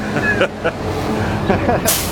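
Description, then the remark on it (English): A big truck rumbles loudly past, a steady heavy roar filling the street, ending in a sharp hiss of air brakes. Faint voices may sit beneath the engine noise. “here we go with another nice big truck.”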